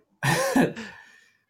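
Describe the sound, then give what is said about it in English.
A cat lets out one raspy, drawn-out meow, breaking into a second fading part, with no one talking over it. “Oh, like, I feel like the cat's not a fan of data capping.”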